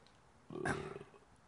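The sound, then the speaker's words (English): A single short, weak burp, a low croaking gulp lasting about half a second with a brief higher rasp at its onset, then quiet. “Counts. Yeah, that was a burp.”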